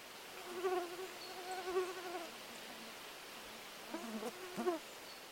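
A mosquito's thin, wavering buzz drifts in, fades, then whines back in two short bursts toward the end, with faint background hiss and no talking.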